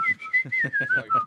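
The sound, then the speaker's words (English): A person whistles a bright, cheerful little Disney-style melody, the pitch gliding gently from note to note, with soft low voiced sounds pulsing rhythmically underneath. “No, I'm always jealous of your whistling. You always have good whistles. That's Disney whistling.”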